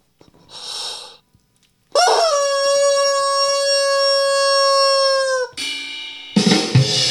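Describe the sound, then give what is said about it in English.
A rubber chicken toy, sold as the world's loudest rubber chicken by Archie McPhee, lets out one long, loud, steady squeal lasting several seconds, bracketed by airy, wheezing hisses as it is squeezed and released. No one speaks. “Behold the world's loudest rubber chicken. Hear him roar!”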